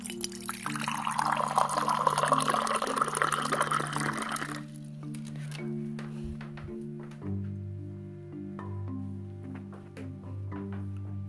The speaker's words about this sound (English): Okay, and I'll go ahead and I will grab a bowl. And okay, now pouring the milk.